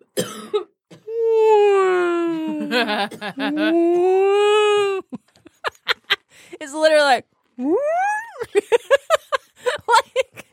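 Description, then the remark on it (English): After a few spoken words, a voice imitates a 40-minute song of whale or dolphin sounds: long, moaning tones that slide slowly in pitch, then bursts of clicks and quick rising squeals. “They play this song, and all it is like either whale or dolphin sounds for like 40 minutes.”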